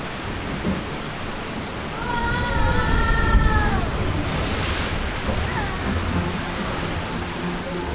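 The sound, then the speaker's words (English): A boat ride drops down a waterfall: steady rushing water swells louder, bursts into a broad splashing whoosh midway, then keeps roaring, with a few high wavering cries briefly above the noise. “Up ahead, our boat plunges down a waterfall.”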